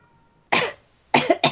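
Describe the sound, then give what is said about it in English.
A person gives a short, self-conscious cough: one dry hack, a brief pause, then two quick coughs in a row, fairly soft, with no talking. “Carlisle coughed self-consciously, the narration tells us.”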